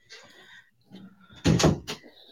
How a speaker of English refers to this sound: Close the door, please. I always do.